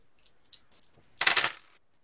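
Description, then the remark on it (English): A few light clicks, then a quick burst of clattering as four dice are rolled during a game, tumbling and rattling across a hard surface for about half a second before settling. “Four dice for natural riches, somebody? I'll do that.”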